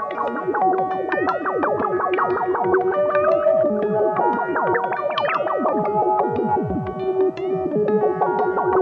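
A heavily processed instrument tone swirls as the stereo resonance on a pedal is raised from about 11 o'clock to about 1. Layered sustained notes and quick sliding pitch sweeps ring out steadily and loudly, with no talking.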